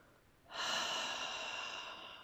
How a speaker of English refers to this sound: We're going to take a nice easy breath in through the nose and hold. There we go. And go. Hold. Let it out through your mouth.